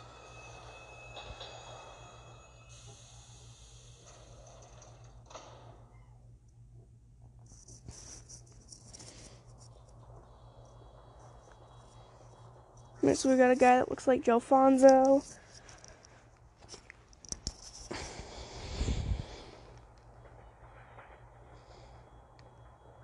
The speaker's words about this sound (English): Alright, we got a bus. It's not a bus, it's a train.